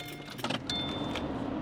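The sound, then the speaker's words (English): Keys jingle in a few quick bursts, then a car engine catches and settles into a steady low idle hum that carries on to the end, as the car is started on a road trip along U.S. 89 in Utah toward Yellowstone National Park. “Yes, so let me get the car going, and then we'll”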